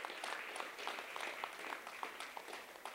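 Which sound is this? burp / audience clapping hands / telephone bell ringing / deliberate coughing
audience clapping hands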